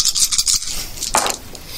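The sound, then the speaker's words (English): Duck dice are rolled for a duck hunt game. They rattle briskly in a series of quick, crisp clicks, then clatter down in one brighter burst before fading out. No one speaks. “Now you have to roll the duck dice for the duck hunt.”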